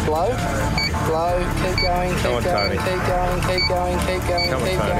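A man blows into a breathalyser for a drunk-or-sober test: a high electronic beep repeats steadily, about once per second, over a dense, loud background of music-like tones.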